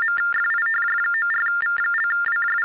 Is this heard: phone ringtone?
yes